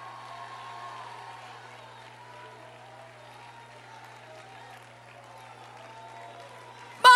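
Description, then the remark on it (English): An audience shouts to the Lord and cheers in a steady, dense roar of many voices for about seven seconds, with a low electrical hum underneath and an abrupt louder burst at the very end. “Lift your voice. I want to hear a shout to the Lord right now.”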